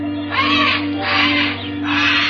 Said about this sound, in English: Old man Kelso had a huge aviary at one corner of the house. Something had disturbed the birds.